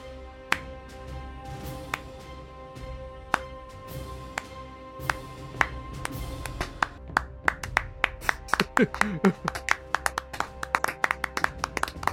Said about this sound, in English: Let the record show that everyone is standing and clapping. Yes. Everyone. Including the judge.